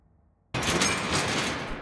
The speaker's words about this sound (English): It crashed and produced an almighty explosion which silenced the carrion birds in the sky.